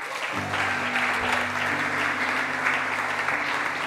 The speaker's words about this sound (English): And as they come up, give them a round of applause.